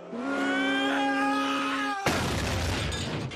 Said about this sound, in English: Just big vehicular destruction there. Just comes out of nowhere, smashes onto Of course Ned's car, because what are the odds?